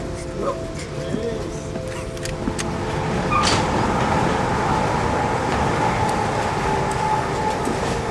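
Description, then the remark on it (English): A steam train runs steadily, its loud continuous rumble and clatter mixed with rushing wind, as heard from the platform between train cars, swelling slightly partway through and holding strong to the end. “Over the wind and the giant steam engine of the train.”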